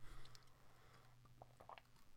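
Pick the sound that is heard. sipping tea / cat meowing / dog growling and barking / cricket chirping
sipping tea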